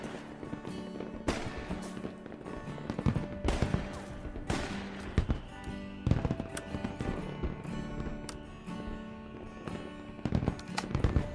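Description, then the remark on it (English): Fireworks crackle and boom alongside sharp blasts of shotguns aimed at the sky, fired at night by a group of men in a front yard; repeated bangs at irregular intervals over a steady rumbling background, fairly loud, with no talking. “Shotguns aimed at the sky, sparks flew, and fireworks lit up the night.”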